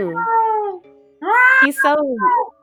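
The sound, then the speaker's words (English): A voice imitates cat meows: a drawn-out, wavering mew, a short pause, then a longer sliding series of meow sounds, loud. “Meow, meow, meow, meow.”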